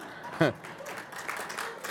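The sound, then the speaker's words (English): Scattered audience clapping, fairly soft and steady, with a short vocal whoop or cry near the start and faint crowd murmuring underneath. “Okay, that wasn't meant for a clap.”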